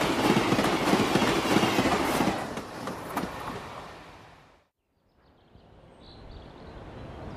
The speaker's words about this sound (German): Kurz vor Kizze passiert der Zug die Grenze zwischen Ost und West.